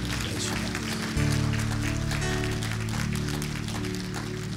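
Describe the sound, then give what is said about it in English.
A church audience claps steadily in praise to God, a dense, sustained wash of applause over a deep, droning bass and organ-like chord that shifts pitch partway through. No one speaks. “Come on, let's give God a good praise clap today.”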